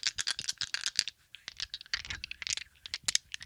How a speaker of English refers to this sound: Now 45 minutes after the top of the hour, and the Moneyline Dice have officially entered the chat. That's right, my friends. Let's start things off with a little dice ASMR for your...